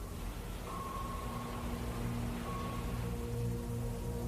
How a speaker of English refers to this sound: By the bay, Friday afternoon. It's been intermittently kind of sunny, and then very rainy all day long.